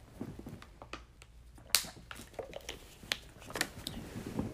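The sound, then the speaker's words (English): Someone drinks water: a scattered run of small clicks, soft squishy gulps and handling noises, irregular and fairly quiet, with one sharper tap midway and no talking. “But hold on, I need some water. My throat getting dry.”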